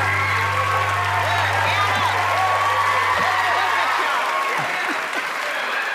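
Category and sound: crowd, audience applause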